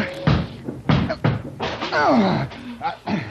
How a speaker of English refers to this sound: Look out. I'm going to break this door down. Oh, it's pretty solid.